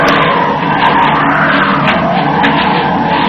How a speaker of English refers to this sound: That is a China clipper flying over us.